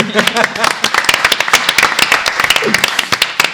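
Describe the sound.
An audience breaks into a round of applause, many hands clapping in a dense, irregular patter that stays fairly loud and steady for a few seconds, with a faint voice murmuring underneath.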